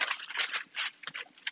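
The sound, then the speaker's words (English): Parchment paper crinkles and rustles as it is pressed into a 9x13 metal cake pan so that it covers the bottom and all the sides, a series of crisp, irregular scratchy bursts, with no talking. “in our cake pan, our 9x13 pan. I'm going to put it into where it's up the sides so the whole pan, put it this way, there's nothing exposed on the pan, okay?”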